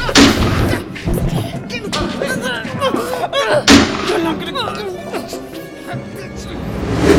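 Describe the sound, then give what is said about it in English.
A loud explosive blast bursts out, followed by a second heavy boom a few seconds later, with rumbling debris and muffled voices underneath. “There was an explosion of some kind near Briggs that sent one of your tactical unit ops into pieces.”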